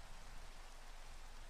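Steady, even rain hisses across a broad band, a dense wash of tiny drops with no pauses or distinct hits. No voices are heard.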